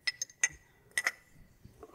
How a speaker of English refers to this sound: So I'm going to start with some pebbles and some sand to give us a base. And then I'm going to stick the big rocks in here. Now I'm going to put this one this way.